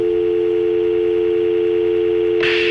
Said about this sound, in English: We are having a report of a dial tone somewhere in coach. If someone could turn off their phone, we'd appreciate it.